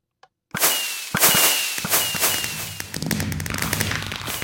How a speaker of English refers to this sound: See, and it has a mix of different fireworks. And it's actually set up to fire each one. Looks like he's got it repeating.